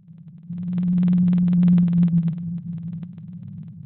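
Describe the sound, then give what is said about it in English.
A blue whale song: a deep, steady droning moan that swells and then fades, peppered with rapid irregular clicks crackling over it. No one speaks. “So, want to hear a blue whale song?”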